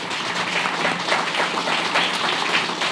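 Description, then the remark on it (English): A crowd applauds steadily, a dense, even wash of many hands clapping at once, fairly loud and sustained throughout with no talking over it. “But please give them a round of applause.”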